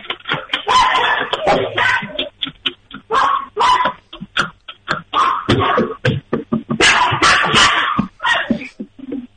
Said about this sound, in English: I said, put the phone right up to the dog when the dogs are barking. Get them going nuts, and then put the phone right they up. They just barked so loud.